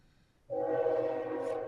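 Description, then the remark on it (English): A passing train's horn sounds one long, loud, sustained blast: a rich, steady multi-tone chord that starts abruptly after a moment of quiet and holds, fading with a Doppler effect toward the end as the train passes. No voices. “Well, I like that you can hear him fade out. Kind of as he passes. That's interesting. You get a full Doppler effect.”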